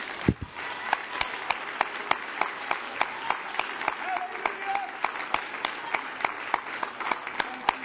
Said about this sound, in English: Clap your hands unto the Lord as you are seated in this place.